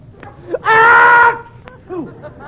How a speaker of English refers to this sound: Good heavens, Bud. Did you hear Costello sneeze?